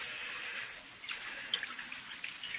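Liquor pours steadily from a jug into a cup, a bright trickling stream with a few small splashes toward the end and no voices.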